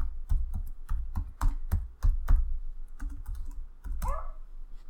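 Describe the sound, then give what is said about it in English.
Loud, rapid keyboard typing: a quick burst of sharp, clacking keystrokes in an uneven rhythm, about a dozen strikes, with no one talking. “Let's do a quick, loud tip type.”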